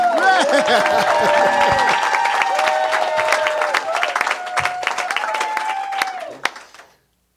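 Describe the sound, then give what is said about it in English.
An audience at a live show in Orlando claps and applauds steadily for several seconds at the show's end, with cheers and whoops mixed into the dense clatter of hands before it tapers off and fades out. “Clap and applaud!”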